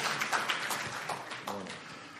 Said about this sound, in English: Yes, it's okay. You can clap for people when they're reading.